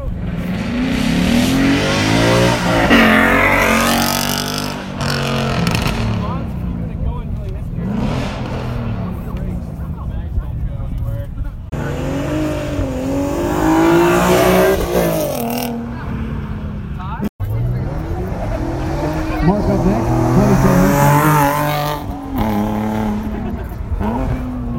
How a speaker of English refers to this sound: All right, let's get back over to the fence line, and we'll do the passes, the sound bites for the rolling exhaust competition.